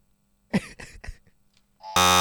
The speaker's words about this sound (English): Have you buzzed in?